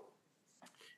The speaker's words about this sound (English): Sorry. I didn't know you had a dog